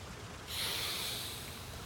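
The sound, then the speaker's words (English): A man lying back in a chair sniffs at a silver smelling bottle: a single long, breathy inhalation through the nose, fairly loud, starting abruptly after a brief quiet moment and holding steady before tapering slightly. No speech. “When I had done, he opened them indolently, took his silver smelling bottle from the table, and sniffed at it with an air of gentle relish.”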